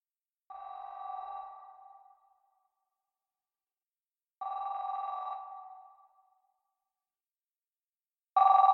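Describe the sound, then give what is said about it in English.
A house telephone rings at 12:58 a.m. in three separate bursts, each lasting about a second and a half, with roughly four seconds of silence between them; the electronic trill is clear and fairly loud, with no voices. “I heard the house phone ring, and then his cell phone in the bedroom rang, you know, and he got it.”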